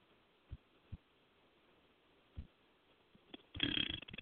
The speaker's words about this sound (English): It's just very gross. I'm a very gross individual, I know. But I'm a fucking man. I burp. Sorry that happens.